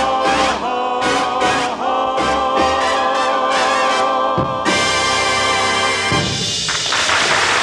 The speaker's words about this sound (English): Did you hear that drum beat on the end of there? Sound like the shore patrol throwing a drunk out of a snack bar, didn't it? Boom, bang, out you well, go.